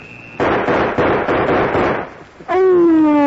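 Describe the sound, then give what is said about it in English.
A rapid string of loud, sharp gunshots fired in a duel cracks out over about two seconds, then a clear sustained whine with a slight downward slide follows, alone with no talking. “We shot that Rilla.”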